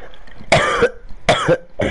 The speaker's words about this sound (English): The coughs are getting worse and worse.